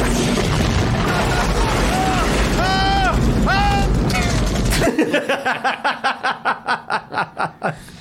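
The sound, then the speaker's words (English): Video game grenade launcher explosions boom in a dense, continuous barrage, with brief tonal whines layered over the rumble, then give way to a rapid, evenly spaced series of sharp bursts. “Shit, even all the explosions that are happening, man.”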